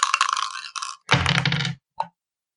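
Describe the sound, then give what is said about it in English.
Several dice are rolled in a game of Yahtzee, clattering and rattling across a hard surface in a quick tumbling burst, followed by a brief settling scrape and one last small click. Fairly loud, with no talking. “Do we not have matching dice?”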